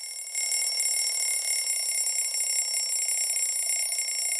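signal or alarm, alarm bell ringing

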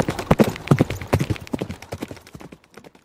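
animal, horse hooves clip-clopping

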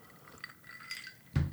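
household object, ice clinking

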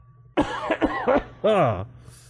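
human body sound, cough

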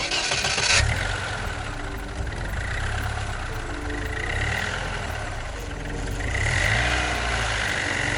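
vehicle, car engine starting

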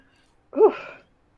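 human body sound, a person sneezing

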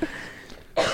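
human body sound, coughing

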